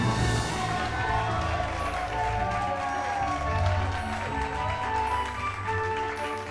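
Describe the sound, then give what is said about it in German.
A crowd applauding and cheering for the 'Ketzer-Großmeister' Matthias, a dense, steady wash of clapping mixed with whooping voices that stays loud and full for several seconds without letting up. “Und umso mehr gilt unser ganzer Jubel dem Ketzer-Großmeister Matthias.”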